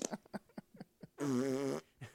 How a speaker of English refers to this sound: Do you find it attractive if I just belch? My daughter hates that shit.